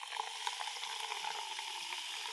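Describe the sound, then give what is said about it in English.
Steady, dense fizzing of tonic water being poured into a drink, a bright crackling hiss with tiny popping bubbles throughout, constant and fairly quiet, with no voices. “a little sound accompaniment to our taster will go with the fizz of the tonic, which is now we're now going to add to the delightful driver's tipple.”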